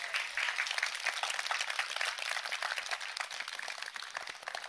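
An audience at a Christian worship gathering applauds steadily, a dense wash of many hands clapping at once with no pauses, holding an even level for several seconds before easing slightly at the end.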